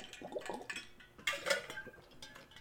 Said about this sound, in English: I'm gonna get that water in me right now.